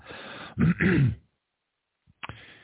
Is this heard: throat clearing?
yes